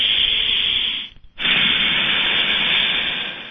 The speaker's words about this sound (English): Keep breathing in through the nose and out through the mouth. And make that noise on your out-breath.